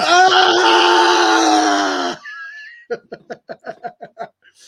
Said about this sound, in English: Everybody thinks he's screaming because he's about to put everything he has into it. Turns out he's in pain.